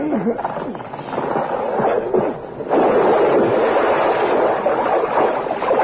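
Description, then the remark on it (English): A truck, shoved by two men, rolls into the water and sinks: a steady low churning and rushing of water that surges louder partway through and stays loud until the end. “As the truck submerges, the two men climb into the waiting car”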